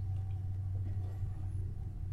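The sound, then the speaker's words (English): A train's deep, steady rumble with a droning low engine tone, holding at an even loudness throughout without voices. “Well, here comes a train.”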